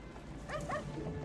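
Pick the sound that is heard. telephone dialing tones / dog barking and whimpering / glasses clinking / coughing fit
dog barking and whimpering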